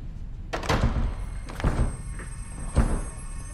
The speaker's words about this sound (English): you broke the door.